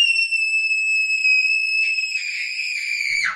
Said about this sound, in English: Okay, and that was just a little kid screaming. Sorry about that.